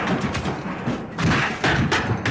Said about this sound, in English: Suddenly, the sofa flew backwards and crashed against the far wall, knocking down a taxidermy squirrel dressed as a pirate.